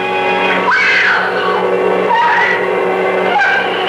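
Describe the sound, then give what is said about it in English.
Loud, eerie shrieking wails rise and fall three times over a sustained droning tone, piercing, with no talking: the maddening, jealous shriek of the screaming skull. “terrorizing those who dare to love with the maddening, jealous shriek of the screaming skull.”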